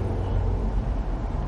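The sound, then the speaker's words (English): A steady, low rumble of traffic and road noise heard from inside a truck cab stuck in traffic, continuous and even throughout, with no voices. “We're stuck in traffic.”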